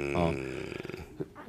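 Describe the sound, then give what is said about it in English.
A voiced, rumbling buildup with a rapid fluttering rattle, then a sudden sharp, hissing sneeze burst right at the end. “Bless you.”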